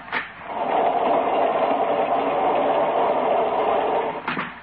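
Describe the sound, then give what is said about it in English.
A train rolls along the rails with a steady, continuous mechanical rumble and rattle. Brief louder clacks come near the start and again near the end, and no one speaks. “Yeah, I'm sorry. The train lurched.”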